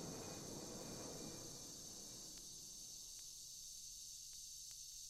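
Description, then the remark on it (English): Cicadas buzz in a steady, high, hissing drone that never lets up, with a rougher low rumble fading out early on and a few faint clicks scattered through. “When they start blasting, the loudest I've ever measured was 96 decibels.”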